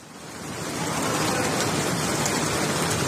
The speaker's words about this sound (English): As I assumed my position as part of the congregation, and as soon as the Imam had started the prayer, something beautifully bizarre happened. It started raining, pouring.